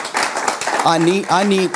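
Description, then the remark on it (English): A crowd claps for water baptism in a dense, steady patter of many hands, and a voice rises over the applause partway through with a couple of drawn-out calls. “Yeah, we need to clap on this.”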